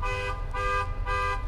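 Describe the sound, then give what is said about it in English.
A white car's alarm blares in repeated horn honks, three steady tonal blasts in quick even rhythm, fairly loud over a low rumbling background with no voices. “they were so intrigued with the story that the car alarms were going off”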